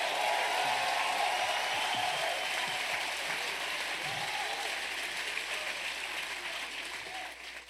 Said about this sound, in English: Everybody give the Lord a hand clap of praise.